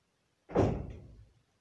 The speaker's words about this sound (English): Okay, that was the door. Sorry for that.